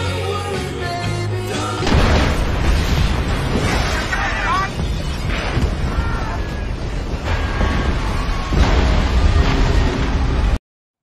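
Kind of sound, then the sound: sound effect, movie explosion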